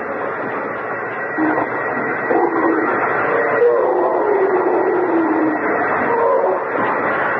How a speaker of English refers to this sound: It's going through like butter. It won't be long. Hey! Arthur, stop the drill.